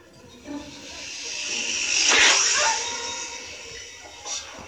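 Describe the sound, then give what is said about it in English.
A snake hisses in a long, breathy rush that swells to a loud peak midway, then trails off, with a brief softer hiss near the end. “God, I hate snakes.”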